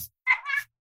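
A single drawn-out meow from a pet cat, fairly loud, rising then tapering off over about half a second, with brief faint rustles before and after.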